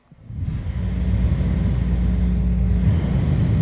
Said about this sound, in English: No, I'm not standing in a wind tunnel. That is the fan blowing on me in this 90-some-odd, 95-degree weather in Chino Valley, Arizona. I am in my office getting this podcast ready to go and doing this intro, and it's hot, so I'm blowing a fan on me.